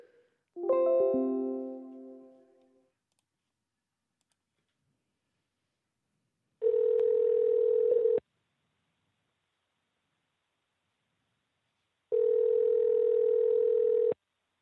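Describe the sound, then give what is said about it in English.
A phone call's ringing tone while calling someone back: a brief electronic chime, then two long, steady buzzing rings, each about two seconds, separated by several seconds of silence. Clear, with no voices. “Let's call this guy back. Fuck yeah. Call that phone, bitch.”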